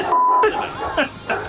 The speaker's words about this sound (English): So we're beeping all that. All that's beep. It's one long beep.